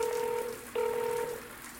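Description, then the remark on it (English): An electronic call tone from a call terminal rings twice in steady, even bursts, a clear beeping pitch with a brief gap between rings, over a soft hissing background. No one speaks. “willing the call to go away, but the terminal kept ringing anyway.”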